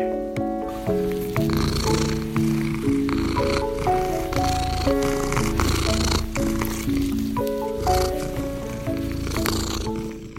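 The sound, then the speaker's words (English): A cat, Charlie, an orange pet cat, purrs steadily in a low, continuous rumble while gentle melodic music with sustained notes plays over it throughout, fairly loud. “welcome to this purring podcast episode”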